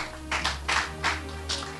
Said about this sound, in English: Clap your hands, church.